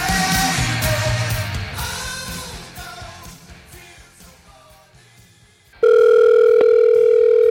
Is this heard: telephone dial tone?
yes